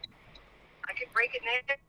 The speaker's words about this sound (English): Oh, the phone broke up a little bit when you said that.